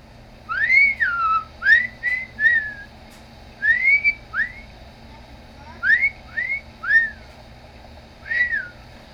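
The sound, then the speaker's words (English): A man tests a cassette recorder by whistling a series of short, swooping notes in small bursts, a bit like a wolf whistle, with brief pauses between phrases, over a steady low hum and hiss of the old cassette recording. “And to test the recorder, he whistles.”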